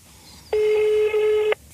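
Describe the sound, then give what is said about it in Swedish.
A single steady telephone tone sounds for about a second as a phone call is placed, loud and clear with a buzzy, harmonic edge, then stops abruptly. There is no talking, only faint background hiss. “Jag tar ett telefon.”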